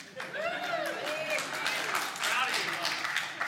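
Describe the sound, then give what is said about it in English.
A crowd of men clapping steadily, a dense patter of applause mixed with rising whoops and cheers, holding at an even loudness for a few seconds. “Those are all the men clapping.”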